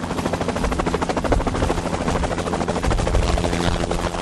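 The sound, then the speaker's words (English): A helicopter's rotor chops rapidly and steadily at Vertiport Chicago, a heliport 2 miles west of the Loop, loud, with a heavy engine roar underneath and no voices throughout. “Helicopters never took off in Chicago because of the fixed-wing option in Mixfield.”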